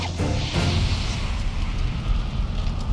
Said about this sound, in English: Gunfire from both sides set off an immediate blaze. The fires are going to grow in intensity.